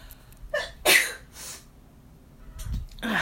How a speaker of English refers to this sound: Just one moment. I'm going to sneeze.